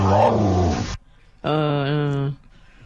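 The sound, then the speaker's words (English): A big dog growls out two loud, drawn-out, moaning vocalizations, each lasting under a second with a brief pause between them. No one speaks. “How about the big dog?”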